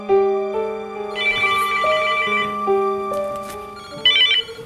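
A phone rings at a home in California with an electronic melodic ringtone, a steady sequence of bright tones playing clearly for several seconds, with no one speaking.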